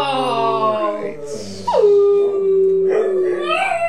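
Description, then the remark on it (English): A dog named Gibson, who has two different eyes, howls loudly: a long wavering tone that slides down and holds steady, with whiny yips and rising whimpers around it. He has been howling for five minutes. “He's been howling for 5 minutes.”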